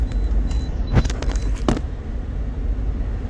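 A police car sweeps past with a brief whooshing rush of noise, heard from inside a moving vehicle over steady low road rumble, with no siren and no voices.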